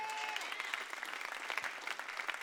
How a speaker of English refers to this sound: Come on, let's clap our hands for the ladies.